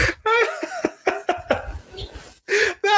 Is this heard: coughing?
yes